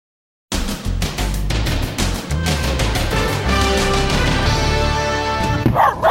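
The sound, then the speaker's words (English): A dog barks repeatedly in quick, loud bursts, the yaps layered over a dense, busy background of sustained tonal sound. “Dogs and the 4th of July. How to keep your dog from going berserk during fireworks.”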